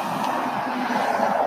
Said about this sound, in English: And there's a car coming back.